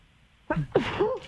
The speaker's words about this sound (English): Oh my goodness, excuse me. God bless you.